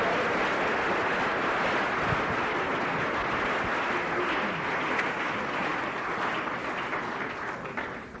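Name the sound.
audience clapping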